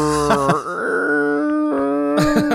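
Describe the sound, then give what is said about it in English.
A voice imitates how a car will sound, like a submarine hull groaning under deep pressure: a long, low, wavering moan that bends in pitch, swells and fades, then groans again, loud and alone with no speech. “Your car's going to sound like a submarine that dove too deep.”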